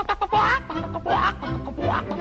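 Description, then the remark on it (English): A voice imitates a hen's clucking in a quick run of nasal, rising squawks, about three main calls with short clucks between, fairly loud. “Live all alone on a farm, and all she has for company are a hen.”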